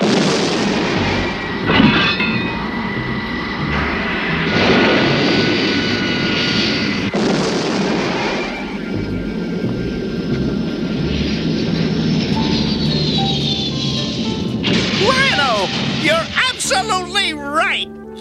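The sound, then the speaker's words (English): The Feliner spaceship's engines roar steadily and loudly through the whole stretch, with booming bursts and whooshing surges, and warbling electronic tones swirl upward near the end as the craft lifts off from Third Earth. “However, Snarf changes his mind as soon as the feliner lifts off and decides to stay on Third Earth after all.”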